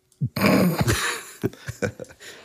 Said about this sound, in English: Oh boy. No laughing on this episode at all, because I just go into like a coughing fit.